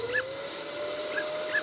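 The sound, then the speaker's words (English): A vacuum cleaner sucking the air out of a bag to make it airtight runs with a steady, whining roar, its pitch holding nearly constant, with a few brief higher chirps of air being drawn through the bag. Fairly loud, with no voices. “I've got a vacuum. We can just use that to sort of make it airtight, right? We can just sort of, like, suck that out.”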